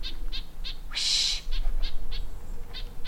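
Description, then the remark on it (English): A bird up in a tree, getting panicked, gives rapid, repeated high-pitched calls in short evenly spaced bursts, broken early on by one louder, longer, harsh screech, all over a low steady background hum. “See how he's getting a little panicked with his, it's more rapid?”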